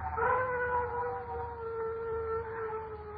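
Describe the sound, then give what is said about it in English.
A dog lets out one long, sustained howl that wavers slightly in pitch and holds for several seconds, clear over a low background rumble, with no one talking. “Dogs howl when ghosts walk.”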